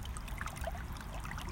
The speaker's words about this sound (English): It's neat because every time I come in to do an episode for you, the water is at different heights and different levels. It's sort of babbling through different areas in the creek here. And it's really unique and different.